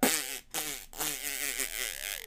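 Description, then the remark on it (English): A person blows a loud, buzzy raspberry imitating a fart, sputtering into the mic in a few bursts split by two brief pauses. “Then make a farting noise and power walk out of that room like you got a quarter clenched between your booty, the same way I ask you to do when we do bridges.”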